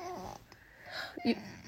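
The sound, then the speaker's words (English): A young boy whines, a thin drawn-out whimper at first, then a short, slightly louder whiny cry after a brief pause, all fairly quiet. “Because he's whining the whole entire episode.”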